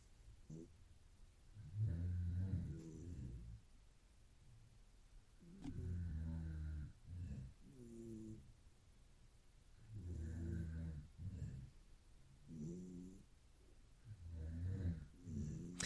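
Heavy, slow breathing from a sleeping man, in long rhythmic swells, with softer snuffly snores from a cat named Clayton underneath in the background, in a bedroom while everyone sleeps.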